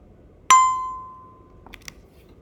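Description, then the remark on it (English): A single bright page-turn chime from a read-aloud of the bilingual colour book Summertime Rainbow rings out clearly and fades slowly over about a second, followed by a couple of faint soft clicks, with no voices. “When you hear the chime, turn the page.”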